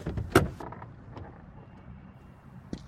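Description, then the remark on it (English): A Mustang pulls into Back Bay at dusk and rolls to a stop with a soft mechanical clunk, its low engine rumble settling and fading, followed by a quiet click at the end. “Dusk turns the sky red as a Mustang pulls into Back Bay.”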